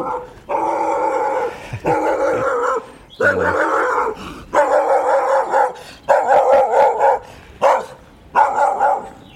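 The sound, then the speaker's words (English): A brown Labrador cross dog barks loudly in the morning, about eight harsh, drawn-out barks in an irregular run, some stretching into howling yelps, with no talking. “Morning dog. Brown, sort of Labrador cross type thing. Very cross.”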